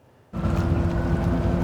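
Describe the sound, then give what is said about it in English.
A boat sinks in False Creek, Vancouver, amid loud, rushing water, with wind buffeting the microphone. The noise cuts in abruptly after a brief quiet moment and holds steady, with a low droning hum underneath. “The boat intended to anchor aviation student J.C. Humchit's future in Vancouver, now sinking in False Creek”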